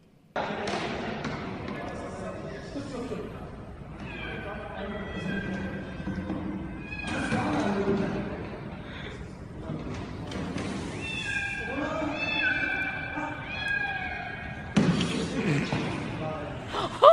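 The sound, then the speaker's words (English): A cat meows repeatedly in drawn-out, plaintive cries over a busy, noisy background with muffled voices and occasional thumps, in a played video of a janitor saving the cat's life. “Janitor saves cat's life.”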